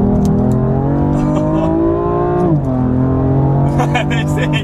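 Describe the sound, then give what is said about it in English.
A car engine pulls away from a roundabout and revs up steadily, its droning pitch rising, briefly dropping at a gear change, then climbing again, loud throughout. “Hang on guys, I'm now pulling off a roundabout, so let's see if you can hear what this engine has to offer.”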